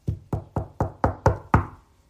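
Seven quick knocks on a wooden surface in a steady, even rhythm, each a little louder than the last, with no voices.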